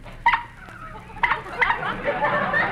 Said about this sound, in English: And listen to this horn.